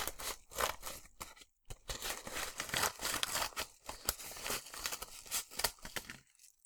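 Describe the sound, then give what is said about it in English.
Wrapping paper crackles and rips as a gift is torn open, a steady run of crinkling, tearing bursts with a brief pause early on, no voices. “I'm going to open the gift you got me. And I already have scissors.”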